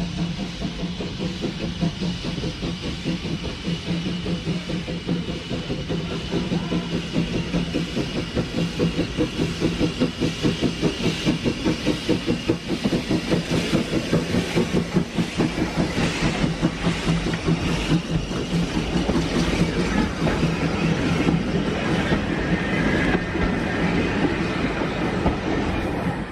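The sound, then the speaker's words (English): The steam locomotive Sir Berkeley (No. 1210), built by Manning Wardle in 1890, runs on rails, its rhythmic clattering and chugging holding steady and loud for the whole stretch, with a faint hiss underneath and no voices. “This is the Sir Berkeley by Manning Wardle. He built the locomotive in 1890.”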